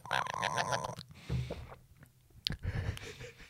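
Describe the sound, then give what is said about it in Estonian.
A person imitates the chattering a cat makes when watching pigeons from a window, using mouth sounds: a buzzy, chirping vocal trill, then low grunts, sharp clicks, and smacking noises, with no talking. “Kui see kass ei tee seda häält, ta on katki.”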